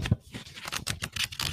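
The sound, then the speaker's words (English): Paper rustles and flips in quick succession, a dry shuffling of tarot guidebook pages being turned while searching for an entry, with several soft crinkles and brushes over a second or so. “These are my pages turning.”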